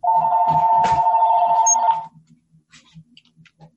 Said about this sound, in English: Hold on. But my phone's just starting to ring.